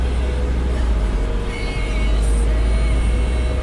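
Steady low-pitched rumble of a car driving, heard from inside the cabin, with constant road noise and a faint hum throughout, loud and unbroken for a few seconds.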